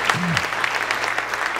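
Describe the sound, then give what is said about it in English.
A church audience claps for the Lord as they are seated, a dense, steady burst of applause, many overlapping claps forming a bright, sustained patter with a low hum underneath. “Give the Lord a hand clap as you're seated.”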